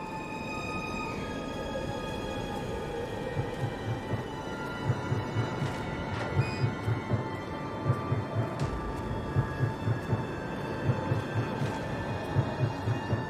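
A train rumbles steadily nearby, its wheels clacking over rail joints in a regular repeating rhythm, with a sustained tonal hum riding above the roar. No one speaks.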